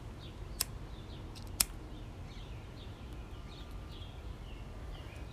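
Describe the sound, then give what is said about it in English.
Small birds chirp repeatedly outdoors by a front porch, their short high calls scattered over a steady low background hum, with two sharp clicks early on and no one talking. “I know y'all hear the birds. I like to record on my front porch.”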